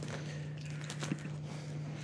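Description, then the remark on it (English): A puppy chewing, heard as a few soft, irregular crunchy clicks and gnaws clustered near the middle, faint over a steady low electrical hum, with no one speaking. “And Puppy is being naughty right now. I was trying not to make any noise about it, but okay.”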